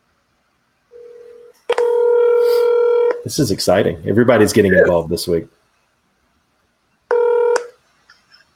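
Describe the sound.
Telephone tones as a call is placed: a short beep, then a longer steady buzzing tone, a stretch of a man talking, and one more brief tone afterward.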